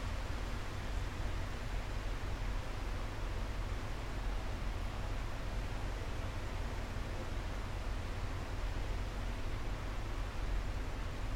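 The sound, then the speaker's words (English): Steady rain falls outside on a balcony, an even, unbroken hiss of droplets with a soft low rumble underneath and no voices or other sounds. “I'm sitting outside in my balcony and it's raining.”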